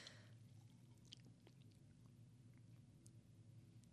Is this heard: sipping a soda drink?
yes